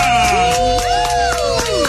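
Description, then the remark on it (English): A studio audience of a radio game show claps and cheers loudly and steadily for the host, the crowd noise mixed with a sustained musical tone and sliding pitches throughout. “Clap louder for me, I say.”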